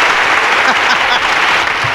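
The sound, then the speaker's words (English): Dense, steady applause from many hands, a continuous crackling wash of clapping that holds at a fairly loud level, with faint voices now and then beneath it. “I didn't want to get the applause started too soon because I had to see if the fade out fit my criteria, and it did.”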